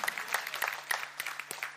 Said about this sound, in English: God wants us, listen, God, yeah, you can clap for that. You should clap for that.